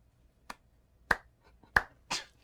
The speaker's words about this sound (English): I'm glad you clapped. You'd be the only one in the TED Talk area that would probably clap to that in the first place.